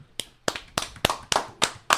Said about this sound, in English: Again, that clapping sounds a lot like you and me. I'm just saying.